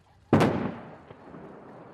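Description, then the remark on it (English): A single loud explosion bursts out suddenly, then rolls away in a long rumbling decay, with a faint second thud about a second later and no voices, as explosives blow up a tunnel at North Korea's nuclear test site. “With a series of large explosions, blast! North Korea claims it destroyed its once-treasured testing grounds, used since 2006 to build increasingly powerful nuclear weapons.”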